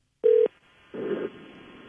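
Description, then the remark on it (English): A single short electronic ringback tone sounds over a phone line, then cuts off, followed by a brief muffled burst of line noise and a faint hiss. No one speaks. “Phones ring first before they pick up.”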